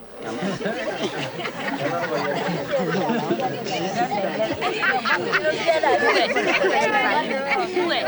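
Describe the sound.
A dense murmur of many voices talking at once fills the space, steady and fairly loud throughout, with scattered chuckles and bits of laughter rising from the crowd.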